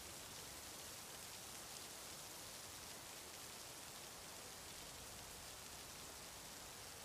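A steady, even hiss of rain falling, constant and unbroken throughout with no distinct drops or thunder, fairly soft and with no voices present.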